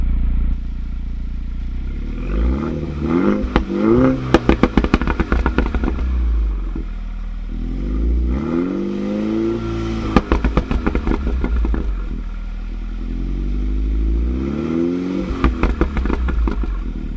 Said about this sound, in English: Okay, now you're going to hear the flap open with the Bluetooth controller. And this is with the exhaust open in track mode.